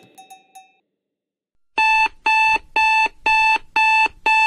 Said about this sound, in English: muttered to himself as he fumbled to turn off his alarm.